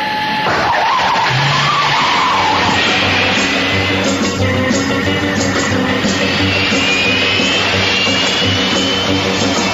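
The Batmobile, a turbine-powered car, roars off with a rising whine and screeching tires, skidding away loudly, with the engine noise sustained throughout and no voices.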